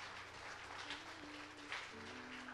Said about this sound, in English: Would y'all give these guys a hand clap and give the Lord a hand clap of praise?